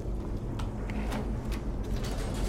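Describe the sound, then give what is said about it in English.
A heavy gate mechanism in a video game grinds open with a continuous low mechanical rumble, punctuated by several sharp clanks and ratcheting clicks, fairly loud with no voices; a handle is activated in a puzzle door system, opening the second of two gates to a hidden room. “Activate the one on the next door. It opens up the second gate, but not the first.”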